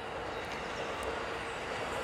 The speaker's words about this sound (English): We got the Surfliner Amtrak train going by.